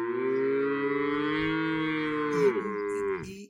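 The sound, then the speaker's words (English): A person does a long, drawn-out moo imitating one of seven fat cows standing by the Nile, one steady sustained call that bends downward and trails off at the end, loud. “Seven just of the thickest cattle you ever seen. Standing right by the Nile. And they're just like...”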